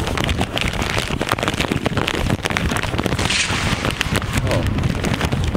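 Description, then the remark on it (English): A thunder and lightning sound effect: a loud, continuous wash of rumbling noise broken by sharp crackling bursts, with a rain-like hiss underneath that holds steady for about six seconds. “Thunder and lightning.”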